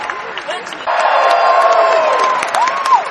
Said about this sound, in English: You know, there's no tiring you guys out, is there? You're just ready for more. Straight away. How many of you are going to cheer no matter what I say?